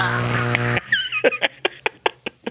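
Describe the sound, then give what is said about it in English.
A loud, buzzy fart blares for under a second, then trails off into a quick run of sputtering pops with faint squeaky whistles. No one speaks. “You farted.”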